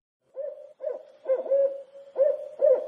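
A barred owl hoots in a rhythmic series of about six rich, clear calls, the middle ones drawn out and slightly quavering, with no other sounds.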